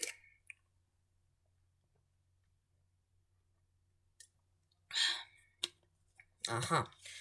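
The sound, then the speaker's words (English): Someone takes a sip of water: a quiet pause, then small wet mouth clicks, a short slurp and a swallow, all soft and intimate. “Before I continue, let me just take a sip of water.”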